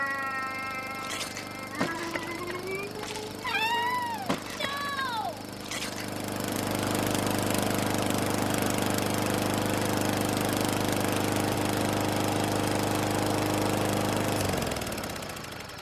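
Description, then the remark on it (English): A lawn mower engine drones steadily and grows louder and rougher as it comes straight toward the listeners, with a few brief swooping cries over it early on, before the motor cuts out near the end. “No, that lawnmower's coming straight at us.”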